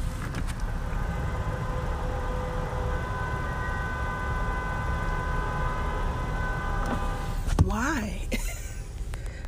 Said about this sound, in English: But honestly, can you hear this? Can you all hear all this honking? Let me roll down my window.